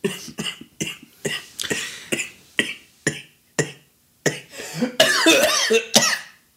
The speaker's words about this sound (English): And you're not even smoking. You're just fucking coughing. Actually, I'm wheezing. Wheezing!